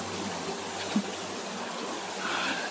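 Flowing water of the Jordan River rushes and burbles steadily throughout, a continuous moderate wash with a faint low hum underneath and no voices.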